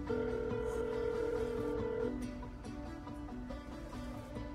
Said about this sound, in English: pulls out his smartphone, dials.